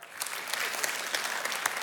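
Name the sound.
audience applauding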